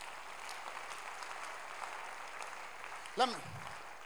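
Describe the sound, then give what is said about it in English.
A crowd claps steadily in a large room, a dense even patter that holds for several seconds, with a single voice calling out briefly near the end. “A clap and a say.”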